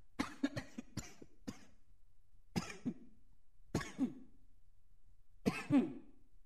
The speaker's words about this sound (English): Hold up a minute there, y'all. I got a cough.